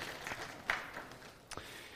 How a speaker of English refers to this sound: Let's give our sprout workers a round of applause as they serve our children.